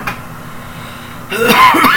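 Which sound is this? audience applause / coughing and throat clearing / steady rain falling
coughing and throat clearing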